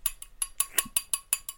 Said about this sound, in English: Me clapping with a wine glass.